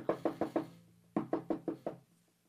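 Two quick bursts of sharp knocks on a door, four raps then five after a brief pause, fairly loud with no one speaking, done as a sound effect for a story of a man knocking on a door.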